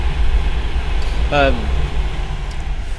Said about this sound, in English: So obviously, I'm getting distracted because I can hear the train coming. Yeah. I'll let that one go. Let the train go.